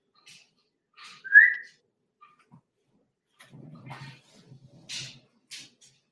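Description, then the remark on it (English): A dachshund lets out one loud, high, rising whimper, followed by quieter snuffles, low grumbling noises and short breathy hisses, with no talking. “My wiener dog is running around here somewhere.”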